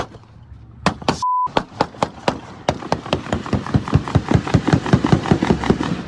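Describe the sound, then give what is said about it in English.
A long burst of gunshots in a park: roughly twenty sharp, loud cracks fired in quick, steady succession, picking up pace, with a brief flat electronic beep near the start. “I mean, that's a number of gunshots in the park.”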